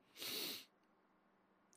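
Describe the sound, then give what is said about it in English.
One big, forceful nasal sniff by someone still healing after nose treatment, asked to show how they can smell now: a loud hissing rush of air lasting about half a second, followed by quiet and the start of another breathy sound at the very end. “Give us a big old sniff.”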